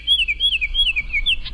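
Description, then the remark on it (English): A western oriole, a western counterpart of the Baltimore oriole, sings a clear, whistled song of looping notes that rise and fall in a continuous phrase, alone over a faint low background hum. “And up next, a Western equivalent of the Baltimore Oriole is today's featured feathered friend, presented by Birdwatching Magazine.”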